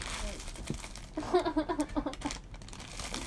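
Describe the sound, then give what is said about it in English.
Someone chews on a crinkly snack bag, giving a quick run of rhythmic plastic crackles and crunches, about six bursts in a row, mixed with muffled vocal murmurs. “Me just chewing on the bag like I chewed on the payway fortunes.”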